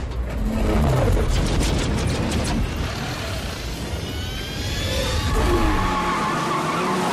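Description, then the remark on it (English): Dom's car in a film scene starts up: the engine roars to life and revs hard, loud, with screeching tire squeals and rising whines over a dense, continuous rumble. The nine seconds of sound were built partly from a recording of an old Buick revving. No one speaks. “The moment that Hector says go, we then CGI ourselves into Dom's car for ignition. And we hear this sound.”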